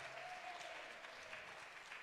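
A steady wash of audience applause, many hands clapping in a dense, even patter that holds at a constant level for a couple of seconds without any voices.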